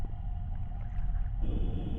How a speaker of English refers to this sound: So, can the horn be blown without making music that transports us here? No, that's the sole purpose of the conch is to summon you here.